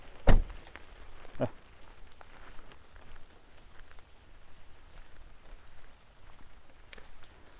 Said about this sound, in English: Oh yeah, maybe you'll hear the rain better on my jacket.